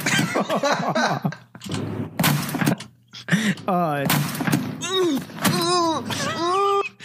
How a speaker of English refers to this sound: Do you know how hard it is to do that kind of damage to the top of a microwave? With your elbow? I don't think he'd use just his elbow.